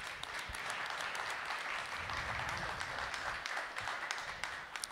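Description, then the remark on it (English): An audience at a church service breaks into sustained applause for God, a dense, steady wash of many hands clapping at once, fairly loud and even throughout with no voices standing out. “Why don't we give God a round of applause?”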